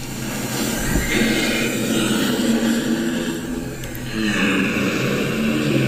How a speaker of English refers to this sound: Giraffe sounds. Okay, at night. Okay, it says specifically at night. Yes. It says giraffes hum at night. It's more than hum.